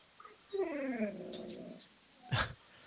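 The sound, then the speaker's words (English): A female dog whines in a long, drawn-out, wavering tone that slowly falls in pitch for about a second and a half, followed by a short sharp huff or snort. “Sound like your dog's getting emotional over there too.”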